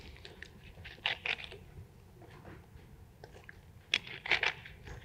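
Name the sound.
drinking water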